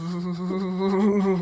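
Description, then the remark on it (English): Someone imitates a bison with a steady, buzzy, low-pitched groan, held evenly for about a second and a half without breaks or other voices. “That's a good bison sound. Like a dying air conditioner.”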